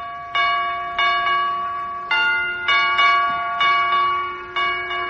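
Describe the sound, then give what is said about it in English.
A door chime rings out a slow, solemn tune of six sustained bell-like tones, each ringing and decaying before the next. The chime is clear, with no one talking. It plays the funeral march when Dr. Gamble presses the button. “Boy, what a sensitive door chime.”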